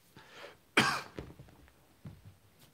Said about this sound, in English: Scared the cat away with a cough. I'm sorry I coughed. She gave me the dirtiest look.